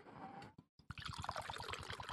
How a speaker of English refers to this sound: All right. I'm ready for the pour. Are you ready for the pour? Let's give it the pour, baby. To Blurberry.